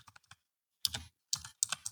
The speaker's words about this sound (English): Or just don't listen and keep typing. Woman, you need to search things on your phone or get a different keyboard because that is ridiculously loud. That was like crazy loud for you.